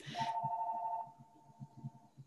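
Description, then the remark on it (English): A telephone rings with a single steady, mid-pitched electronic tone lasting about two seconds, after a brief burst of hiss, with soft low thumps pulsing underneath and no talking. “My husband will grab that phone, I'm sure.”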